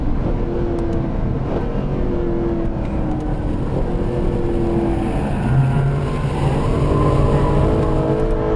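A car engine revs loudly and continuously, its pitch rising and dropping as the car slides sideways with its back end out through a corner at Goodwood, in fourth gear, with no voices over it.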